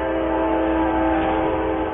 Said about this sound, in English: Look out, here comes the train.